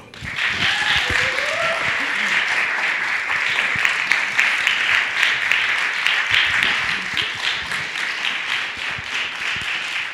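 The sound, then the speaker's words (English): A storytelling-event audience claps loudly and steadily for about ten seconds to welcome the next storyteller, a dense, sustained wash of applause with a brief voice or cheer rising early on. “So please be very kind and very raucous with your applause”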